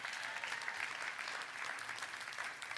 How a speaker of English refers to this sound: I wish you'd clap your hands and shout with me if you believe that.